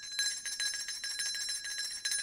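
A small, bright bell rings rapidly and continuously in quick repeated strikes for a couple of seconds, with a shimmering metallic tone and no voices, at a moderate, steady level.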